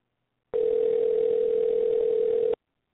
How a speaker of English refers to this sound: See what happens. Let's try to do it our way. It's ringing, everybody.